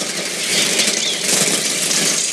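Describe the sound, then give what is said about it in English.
A dense, continuous whir of hundreds of sparrows' wings flapping at once as they pour out of a chimney into a house, loud, a fluttering rush with no talking. “Suddenly, hundreds of sparrows dump out of the chimney into the house, and everyone is losing their shit.”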